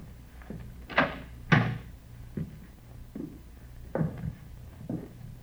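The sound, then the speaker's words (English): Someone tries an apartment door and opens it: two solid clunks, followed by a scattering of softer rattles and clicks at an uneven pace, with no voices. “Better try the door, huh?”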